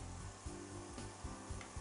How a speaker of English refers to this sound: Okay, hear that sizzle? That's what we want.